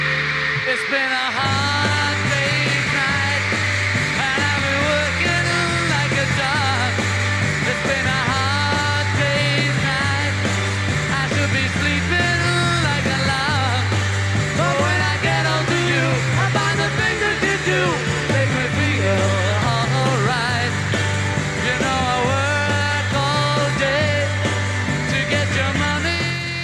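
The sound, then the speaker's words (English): On a live concert recording, a crowd cheers and screams continuously over a loud live band performance, with a steady thumping bass line and sung vocals woven through the dense, roaring wash of noise. “Let's hear what this live version is like. Oh, there's a crowd there.”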